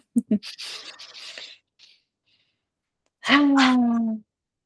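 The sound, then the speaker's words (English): A single forceful, voiced exhale pushed from the back of the throat after inhaling through the nose, a raspy 'haaa' in a dragon breath exercise lasting about a second with a slightly falling pitch, following softer breathy noises. “So you're going to inhale through your nose, and on the exhale, breathe it out through the back of your throat, making a high noise like you're a breathing dragon.”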